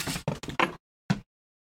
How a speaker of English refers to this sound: I totally just knocked over a bunch of stuff on my desk. I heard it.